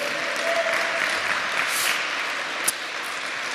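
Steady applause from a crowd fills the space, a dense even patter of many hands clapping at moderate loudness, with no one speaking over it.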